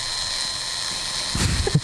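A battery-operated vibrator buzzing steadily with a high, whiny electric hum that holds throughout, briefly joined by a rattling, thumping disturbance near the end. No voices are heard.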